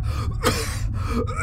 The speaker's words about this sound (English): I gasp, coughing at the coppery stench of my own hot breath.